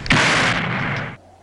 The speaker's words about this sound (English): Oh, he got shot, and he has the grenade, and he just blew up. Oh, he never got to throw the grenade. Oh, huge explosion. Oh, this mine shaft is going up like a freaking fireworks storage facility.